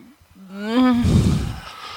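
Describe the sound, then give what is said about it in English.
A loud screech from a swarm of flying monkeys rises sharply in pitch, then breaks into a rough, growling roar that fades over about a second. No one speaks. “Okay, so the sound, the echoing of the word monkey breaks whatever silence was nearby, and all of the flying monkeys, like, stop. And they start to swarm.”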